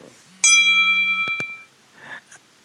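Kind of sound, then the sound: signal or alarm, bell ringing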